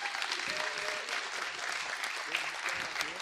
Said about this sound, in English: So will you please give a huge round of applause and welcome Mr. John Bruce.